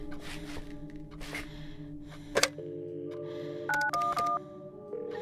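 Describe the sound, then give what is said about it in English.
A landline handset clicks up to a steady dial tone, then three short keypad tones beep in quick succession as 911 is dialed. Soft breathy rustling precedes it, fairly quiet. “She crouches at the side of the couch and curls up with the phone to her ear.”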